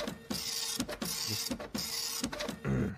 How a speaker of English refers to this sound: Stop printer. Oh, there we go. Okay. I love that sound.